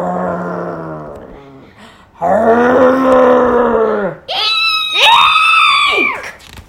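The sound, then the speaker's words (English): A voice imitates a huge, shaggy, gray wolf: loud, drawn-out growling moans in a low register, then rising, high-pitched howling cries that swell and fall away. “It may look like a huge, shaggy, gray wolf over there.”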